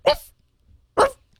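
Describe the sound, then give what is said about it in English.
Two sharp, high yaps from a small dog, spaced about a second apart, fairly loud with brief silence between them. “That little dog.”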